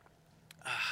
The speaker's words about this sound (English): So let's jump in here after I take a sip of my water.